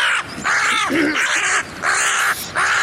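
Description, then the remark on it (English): A bird screech sound effect, played to mark a Monday Night Football 'bird battle' between the Philadelphia Eagles and Seattle Seahawks: harsh, raspy squawks repeated four times in quick succession, loud, with no talking underneath. “I might need a new bird sound.”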